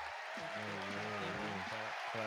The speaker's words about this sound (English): Clap it up.